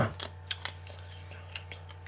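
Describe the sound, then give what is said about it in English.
Crunchy chewing of food, a series of sharp, crackly bites repeating irregularly over a steady low hum, fairly soft with no talking. “I'm going to chew this up real quick.”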